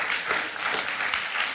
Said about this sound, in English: You can clap, I'll wait. Oh, thank you, thank you.